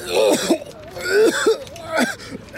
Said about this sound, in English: I suck in a breath to scream again, inhale chalky drywall dust, and start to cough convulsively.